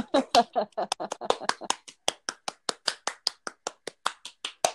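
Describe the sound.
A short round of applause: steady, evenly spaced hand claps, roughly two dozen in under five seconds, loud and crisp, with a brief cheering voice at the very start.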